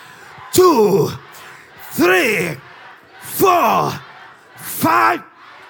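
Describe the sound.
An audience shouts "I am blessed" together in unison, four loud, forceful bursts of voices at a steady rhythm, each about a second long with brief pauses in between.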